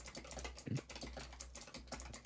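Rapid, irregular clicking of keys on a computer keyboard, fairly quiet, with a steady low hum underneath and no voices.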